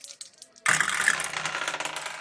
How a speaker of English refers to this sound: And I don't like my dice tower because I rolled a 1 on the wild die. And got a 7 total.